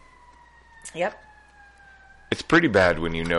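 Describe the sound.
A fire engine siren wails faintly, heard from inside a garage, a steady tone sliding slowly lower in pitch as it passes, while people chat and one voice briefly speaks over it.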